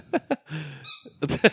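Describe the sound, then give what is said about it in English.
A dog works a squeaky toy, giving a quick series of sharp, high-pitched squeaks with a short whistling squeal in the middle, fairly loud, with no talking. “No, it's a no squeak toys.”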